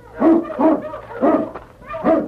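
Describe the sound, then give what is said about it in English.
The great dog King barks four times in short, resonant bursts, two quick ones followed by two more spaced out, with no talking over them, near rocks in the snow. “But as they neared the rocks, the great dog King sensed death in the air.”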